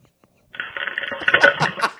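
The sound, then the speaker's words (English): Loud, raspy farts burst out after a moment of silence, followed by a few sharp, splashy pops as something drops into toilet water, recorded on a voicemail. “You can hear the firecracker farts and the shit splash.”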